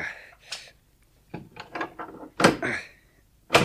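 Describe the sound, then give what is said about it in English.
Bolts on a cellar door are drawn back in a series of metallic scrapes and clunks, coming in irregular bursts with short pauses between them. “If we can get some of this rubble out of the way. Those bolts are recent.”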